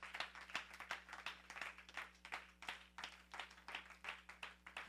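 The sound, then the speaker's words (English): A crowd applauds with steady, overlapping hand claps, sharp bursts rising and falling in waves throughout, over a faint low hum; a hand clap to the Lord for the message. “Another big hand clap to the Lord God Almighty for the message.”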